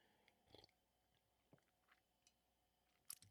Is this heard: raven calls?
no